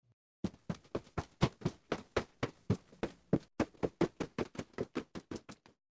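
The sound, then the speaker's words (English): Quick running footsteps patter in a steady, rapid rhythm, about two dozen sharp thuds over several seconds, with no voices, as a catgirl takes off running. “I realize my mistake when the Catgirl takes off running.”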